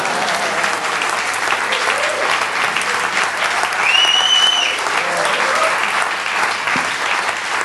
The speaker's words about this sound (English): You can clap or something like that.